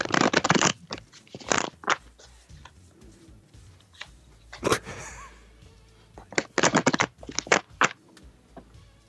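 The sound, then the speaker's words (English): Crisp bursts of the first of several decks of playing cards being shuffled, quick papery riffles coming in clusters with short pauses between, no talking over them. “All right, I am shuffling your first deck right now.”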